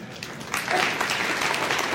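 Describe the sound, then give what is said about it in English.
An audience breaks into applause, many hands clapping in a dense, steady wash that starts quieter and swells after a moment, then holds at an even level. “I had to wait for that clap because you didn't want to give it to me.”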